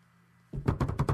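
A quick run of about six knocks on a table, made in excitement: sharp, fairly loud thumps in a rapid, slightly uneven rhythm, following a second of quiet low hum. No one speaks.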